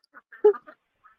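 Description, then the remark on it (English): A duck quacks in a quick run of short, nasal calls, the loudest in the middle, followed after a brief pause by one faint final quack, at the duck coop of Cottonwood Urban Farm, which keeps 30 ducks. No talking. “Over here, that little door, that's the duck coop.”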